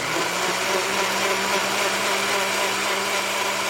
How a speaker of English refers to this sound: It's actually a very empowering experience to make your own fuel, even if you just make a liter of fuel in a blender.